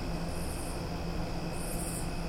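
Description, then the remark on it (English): Faint crickets chirping on a summer night, their high trills coming in two short bursts over a steady low hum of some sort of fan and a soft hiss. No one speaks. “But then, got crickets chirping. Got the sounds of the night, the sounds of summer nights.”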